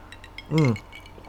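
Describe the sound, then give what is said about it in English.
Two people clink their glasses of New York Sour cocktail together in a toast: several light, bright taps spread across a second, with a brief hum-like vocal sound in the middle. “So cheers, first of all. Cheers. Hold, as we both hold up our distinctive glasses to the camera.”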